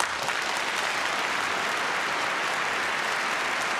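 Steady audience applause, a dense, even patter of many hands clapping at a constant level for a few seconds, with no voices standing out.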